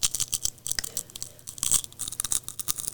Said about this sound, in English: Oh, the crunch on that thing. Okay, nice.